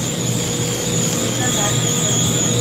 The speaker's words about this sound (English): What's always the swirling? What's this noise always going on? Oh, yeah, I guess it's the Slurpee machines here.